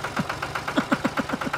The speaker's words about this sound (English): Slow to fire up the tractor.